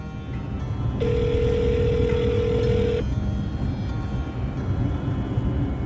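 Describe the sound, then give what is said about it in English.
A single two-second ringback tone, the steady buzz-like purr of a phone ringing on the other end of a call, rises out of a dense, constant background rumble and then stops. No one speaks. “That evening, I finally get Pocket on the phone.”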